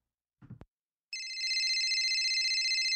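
A brief soft thump, then a telephone starts ringing: a loud, continuous electronic trill with a fast warble that carries on to the end, with no one talking.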